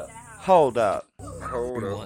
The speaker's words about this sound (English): Puppies. Oh, the dogs are just barking. Alright. Little ankle birds like that just bark.